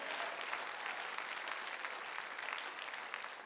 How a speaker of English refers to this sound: Can I have somebody give the Lord an applause?